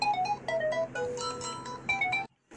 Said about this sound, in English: I forgot what I was saying. I got a phone call in the middle of recording.